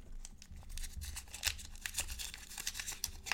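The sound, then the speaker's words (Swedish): Paper crinkles and rustles as a folded white note is opened on camera, a run of soft, crisp crackles with a few sharper snaps, continuing steadily for a few seconds with no voices. “Den öppnas verkligen tydligt i kameran.”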